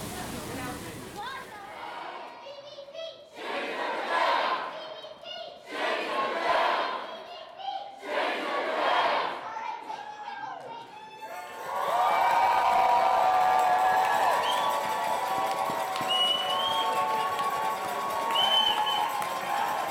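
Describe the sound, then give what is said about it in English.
A rally crowd at Our Time's CBC Change the Debate rally at CBC headquarters downtown, after a summer thunderstorm downpour, chants in four loud, rhythmic bursts with short pauses between, then breaks into a continuous roar of voices with some sustained sung or shouted tones rising above the noise. “After a thorough downpour, we finally made it to the main crowd of Our Time's CBC Change the Debate rally to catch some chants, songs, and this interview.”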